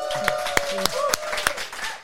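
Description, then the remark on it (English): Five or six sharp, evenly spaced claps ring out over about a second and a half, a thin and steady round of applause from an audience giving event sponsors a hand, with a faint voice murmuring underneath. “Let's make it sound like there are people here and give them a hand.”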